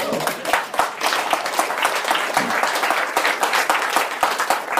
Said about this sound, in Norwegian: Ja, det lov å klappe for det.